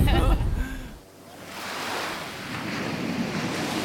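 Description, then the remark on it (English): Ocean waves wash onto the shore in a broad, steady roar that swells up after a brief voice at the start, with some wind buffeting the microphone. “We made it to the ocean. You hear it.”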